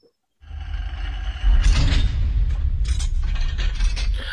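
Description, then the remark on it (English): A heavy vault door rumbles shut with a deep, resonant low boom, followed by several sharp metallic clanks and ratcheting clicks as the locking mechanism engages, loud with no voices. “Yeah, the vault door closed and locked.”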